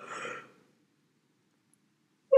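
A breathy yawn trails off into an exhale lasting about half a second, followed by nearly two seconds of silence before a voice briefly starts up at the very end.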